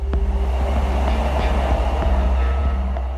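A Japanese bullet train heading out of Tokyo toward Kyoto, carrying Sony's Ken Kutaragi, rumbles steadily, a deep low drone with faint rhythmic clicks of wheels over track, heard as if from inside a carriage. No voices.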